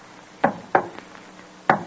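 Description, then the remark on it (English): Knocks on a hotel room door, room number 23 on the second floor, in a deliberate secret-signal pattern: two sharp raps close together, a short pause, then a single final rap. Crisp and fairly loud, with no voices. “The coast is clear, as he thinks, and he steps quickly forward to room number 23. Raises his hand and gives a secret signal.”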